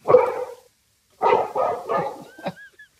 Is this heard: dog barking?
yes